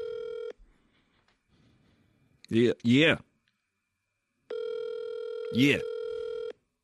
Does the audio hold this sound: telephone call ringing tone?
yes